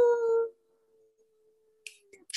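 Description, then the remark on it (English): A person howls like a wolf: a loud, steady, tonal cry that drops to a long, faint, sustained note, followed by a few brief breathy bursts at the end. “Wolf howl. You guys can do a wolf howl if you want.”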